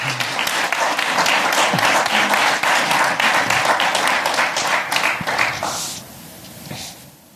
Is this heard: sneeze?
no